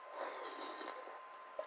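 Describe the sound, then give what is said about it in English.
A short burst of water being poured or sipped, a soft continuous trickle with a few bright droplet plinks, no voices. “This is some good-ass water.”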